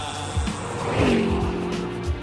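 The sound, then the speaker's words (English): A car engine revs while tires squeal in a sharp, rising screech near the middle, followed by a sustained skidding whine over a dense, loud traffic rumble. “Sick of copping it on public transport? Why not get a car?”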